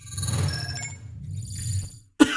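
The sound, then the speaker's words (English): A low, muffled rumble fills the first two seconds, then a brief pause before one sudden, loud cough bursts out at the very end. “Oh, I'm so sorry for coughing.”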